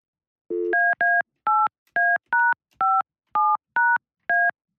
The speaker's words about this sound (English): So hang on 1 second. I'm going to dial the number up.